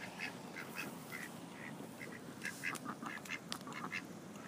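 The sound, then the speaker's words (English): Several ducks quack repeatedly in short, overlapping bursts over a steady background rush of outdoor noise; no one speaks. “But are they fighting over the girl duck?”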